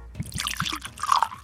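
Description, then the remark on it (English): Dubstep-aged whiskey glugs and splashes into a glass in a brief pour, with a few bubbly gurgles and a rising trickle toward the end. No one speaks. “All right, Henry, let me pour you some.”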